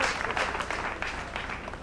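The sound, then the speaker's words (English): An audience claps in a dense, steady burst of many overlapping hands, loud and sustained throughout with no individual voices standing out. “Start that clap up.”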